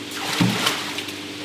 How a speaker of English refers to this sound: That bucket tips over and pours a whole bunch of water in to mix everything up. Exactly. So it just gets, and you can see if you look at a frond down there, when the bucket tips, you watch the effect that it has on it.